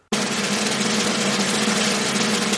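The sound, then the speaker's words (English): A rapid, sustained drum roll starts abruptly and keeps a steady, dense rattle at constant loudness for a couple of seconds, fairly loud, with no voices over it. “Drum roll, please.”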